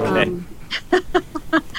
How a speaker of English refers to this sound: Whereas a play trumpet is, you know, kind of much, and they're usually running when they're playing, and so it can be pulsated. They make these very funny nasal play trumpets that are, well, it's like a very large man blowing his nose.